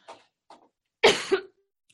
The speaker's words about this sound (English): Thank you all for bearing with me. Thought I was going to make it without coughing through the presentation, but so much so.